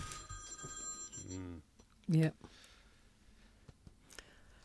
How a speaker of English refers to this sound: Okay, whoever silenced their phone, well done.